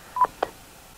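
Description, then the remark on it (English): Two quick DTMF touch-tone keypad beeps from a phone during an Echolink amateur radio connection, the first slightly longer than the second, sounding in close succession and then giving way to a quiet background hiss. No one speaks. “November 5, Zulu, November Oscar, disconnected. Deactivating Echolink.”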